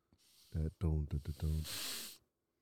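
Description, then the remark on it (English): A few low, croaking voiced bursts of a burp, then a sharp breathy hiss as the burp is sucked back in, all over in about two seconds. “I burped, and then I sucked it in.”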